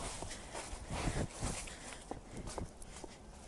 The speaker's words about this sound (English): It's very windy here. I think the wind is trying to get rid of the last of the leaves. You can possibly hear underfoot.